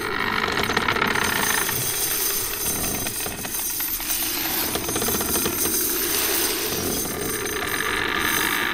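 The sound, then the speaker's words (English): Heavy chains drag and clank continuously, a dense, grinding metallic rattle that stays loud and steady throughout, with no voices. “Scrooge did not know what this next sound was, and then remembered to have heard that ghosts in haunted houses were described as dragging chains.”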